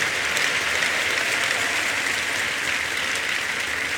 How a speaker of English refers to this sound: Big clap offering this morning.